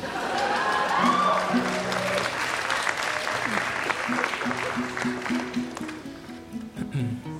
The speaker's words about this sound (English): Do you hear how they applauded